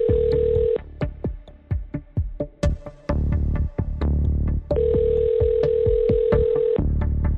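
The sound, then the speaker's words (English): An outgoing phone call rings on the line, two long steady ringback tones separated by a busy stretch of sharp clicks and handling noise, with no one picking up. “He didn't answer, so I left him this message.”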